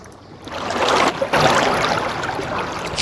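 Water sloshes and laps steadily against a wall, with a couple of brief splashy surges; a continuous wash of sound with no voices.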